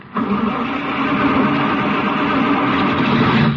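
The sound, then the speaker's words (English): An old car engine, left outside overnight, sputters and churns as someone tries to start it, a loud, rough, steady rumble that runs without a break for about three and a half seconds, with no voices over it. “Darn old car.”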